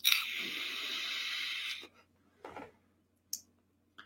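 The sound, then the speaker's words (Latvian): Air is drawn through a refillable pod-mod e-cigarette with its airflow fully open in one long, airy hiss with a thin whistling edge for nearly two seconds, followed by a few short, softer breathy puffs. “Nu, gaiss ļoti daudz nāk cauri, gaiss tep cik.”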